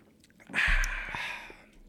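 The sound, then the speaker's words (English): Cans are popped open for drinking: a sustained fizzing hiss lasting about a second, with faint wet sipping or slurping sounds, quiet and with no talking. “Let's pop these motherfuckers open. Ooh. Drinking some farm water.”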